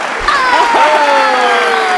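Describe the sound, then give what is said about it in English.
A dense burst of crowd applause, a sound effect added in post-production, fills two seconds at steady loudness, with a few gliding whistle-like tones sliding downward over the clapping. “Well, I don't have a soundboard, so I would normally like hit a button and give you a round of applause, but instead I just said can you do that later in post?”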